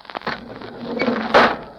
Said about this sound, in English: What's that hissing sound? That means that air is being pumped into this chamber. We're going under pressure.